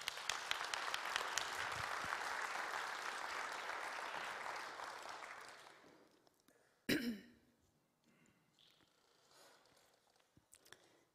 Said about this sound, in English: Thank you very much. Give her a clap.